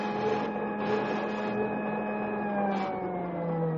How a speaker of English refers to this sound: Now, I'll put on a spool of defectively insulated wire. Mm-hmm. There. Hey, what's that? Well, each time there's a break in the insulation, this buzzer sounds off.